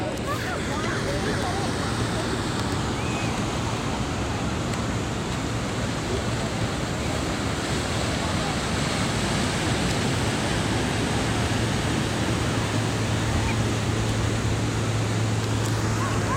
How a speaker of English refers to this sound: Welcome to the Divinely You podcast, live from the Pacific Ocean in Oceanside, California. I hope that you can hear the waves of the ocean.